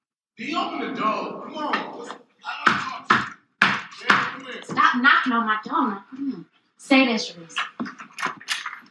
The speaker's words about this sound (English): Stop knocking on my door.